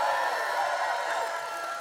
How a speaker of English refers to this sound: Because I'm going to say this once more, and I want you to cheer like your favorite team is in, you know, playing. You have the best pastors in the world.